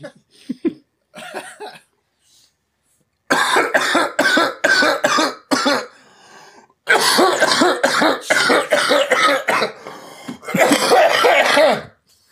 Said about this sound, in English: My back hurts from coughing.